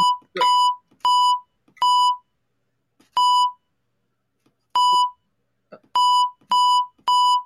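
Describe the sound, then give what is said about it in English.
Morse code beeps: eight steady, mid-pitched electronic tones of similar length, separated by uneven pauses, with faint clicks between some of them and no voices. “No, this is Morse code.”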